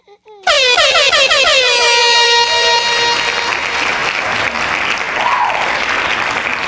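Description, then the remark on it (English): A loud, wavering air horn blares in abruptly and holds for a couple of seconds, while dense hand clapping fills the background and carries on steadily after the horn fades. “Air horn, hand claps.”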